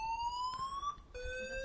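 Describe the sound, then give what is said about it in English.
A fire alarm, a false alarm, blares with a loud, steady electronic tone that shifts abruptly from a higher pitch to a lower one partway through, sounding alone with no voices. “A fire alarm just went off.”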